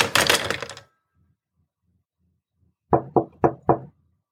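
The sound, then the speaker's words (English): Four quick, firm knocks on a door in an even rhythm, clear, following a brief clatter and a moment of silence. “Someone knocked at the door as I placed the handset back over the switch hook.”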